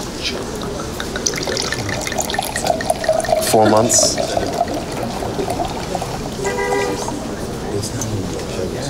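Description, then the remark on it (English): Liquid is poured into a glass in a steady gurgling stream that runs for several seconds, its pitch creeping upward as it fills, while people talk over it. “Yes, you can pour.”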